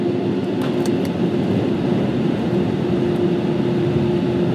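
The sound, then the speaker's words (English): A hair dryer blows steadily throughout, a constant loud whoosh of air over a low motor hum with a faint whine, with a couple of small clicks near the start and no voices. “Okay, here we go. Got the dryer.”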